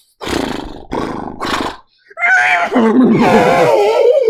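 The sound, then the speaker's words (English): Someone imitates an elephant with their voice: three short, rough roaring bursts, then a long, wavering trumpet-like wail that rises and falls, loud. “I said horses, not elephants.”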